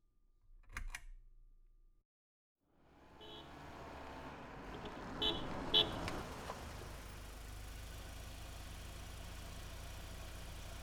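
A brief clatter, a moment of silence, then the engine of a car with tan leather seats, arriving as a scheduled ride to the airport, starts up and settles into a steady idle with a low rumble and faint mechanical ticking.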